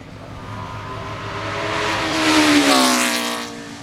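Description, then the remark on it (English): A racing car, driven by Damon Hill in his father's car, roars past, its engine note climbing as it approaches, peaking loudly, then dropping in pitch as it speeds away. No voices are heard. “in his dad's car.”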